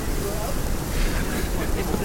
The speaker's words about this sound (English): Oh yeah, there's a cool fountain kind of thing here.